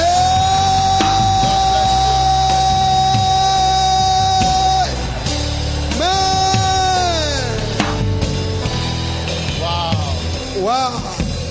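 A large crowd at a religious gathering shouts a long, loud unified "amen" that holds steady, then breaks into scattered cheers and whoops, with echo.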